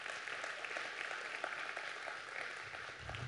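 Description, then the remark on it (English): Steady applause from a crowd fills the whole moment, a dense continuous patter of many hands clapping at once, with no voices on top. “Yeah, that's a good time to clap.”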